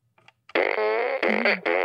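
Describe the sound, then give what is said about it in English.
A loud electronic fart noise from a toy fart gun: a long buzzy, wobbling blast that breaks into three rapid segments, preceded by a couple of faint clicks, with no talking. “That's the fart machine. Oh, yeah, that's our fart gun.”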